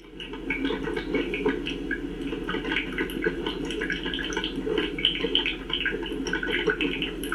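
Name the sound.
drip coffee maker brewing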